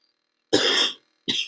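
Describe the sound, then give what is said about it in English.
Two sharp deliberate coughs, the first longer and harsher, the second a brief burst after a short pause, with no talking around them. “That coughs what I think about Yankees fans.”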